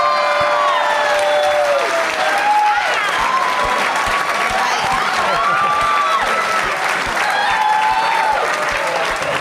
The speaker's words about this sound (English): It's the biggest applause Gremlins 2 has ever gotten.